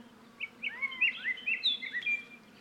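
A colorful yellow and black Scott's oriole of the Sonoran Desert sings a rich, musical whistled phrase of several quick, fluting notes that rise and fall in pitch, clear over a faint low hum, with no talking.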